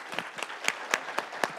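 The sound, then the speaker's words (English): An audience applauds to thank the guests, with several sharp, distinct claps standing out every quarter second or so over a steady wash of softer clapping at moderate volume. “Let's have a round of applause to thank our guests.”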